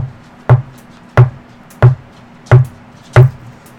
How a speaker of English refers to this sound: So you want to knock on the door 6 times? Yep.